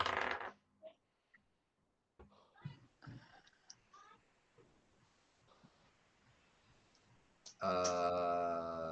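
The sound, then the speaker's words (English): Dice clatter and tumble across a hard tabletop in a quick burst of sharp clicks, rolled for a knowledge nature check in a tabletop role-playing game, fading into faint rattles, before a loud voice cuts in at the end. “Dice don't fail me now.”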